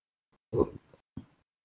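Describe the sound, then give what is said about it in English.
A quick slurp of coffee: a short, noisy sip with a throaty edge, followed a moment later by a brief, softer second sound. No one speaks. “Sorry that you had to listen to me slurp, but I am still drinking coffee.”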